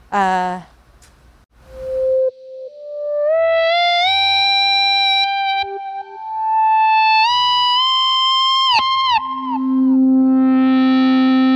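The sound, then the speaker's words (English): A sustained, swelling electric guitar tone, played through a Digitech pedal with the dry signal turned off, glides slowly upward in pitch like an EBow, drenched in delay and reverb, with no attack, ending in a lower droning note; no voices. “It's like an Ebo. Yeah, it's like an Ebo, right?”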